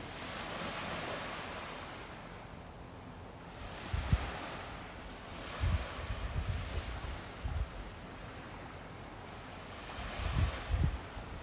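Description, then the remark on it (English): Ocean waves in the Bahamas wash steadily onto a shore, a broad hissing roar that swells and recedes, with low thumps of breaking surf around four, six and ten seconds and some wind rumble. No voices. “A Wave Meditation from the Bahamas”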